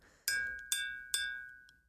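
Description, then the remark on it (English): Three bright, ringing taps on a glass jar holding water, evenly spaced, each with a clear sustained pitch that rings out and slowly fades, fairly loud with no talking. “Well, first there was a tink, tink, tink, then a tang, tang, tang, then a dung, dung, dung.”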